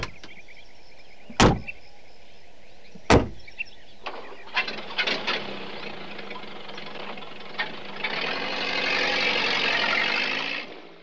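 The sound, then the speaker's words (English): Two sharp car door slams a couple of seconds apart, then an engine starts up and runs with a steady rumbling idle that grows louder toward the end. “Hop in. I'll drive you home.”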